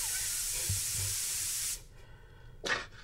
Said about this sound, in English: You sprayed my front twice! Never turned? No, I barely even got to three Mississippi.